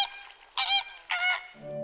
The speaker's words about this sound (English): Ready? That was flamingo.